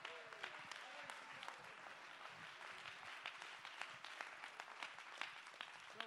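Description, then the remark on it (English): A church audience claps hands together in a dense, continuous wash of sharp overlapping claps, steady in loudness throughout, with faint voices murmuring underneath. “Clap your hands and lift your voice in Jesus' name.”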